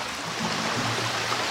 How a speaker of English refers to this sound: Now let's bring in the ocean.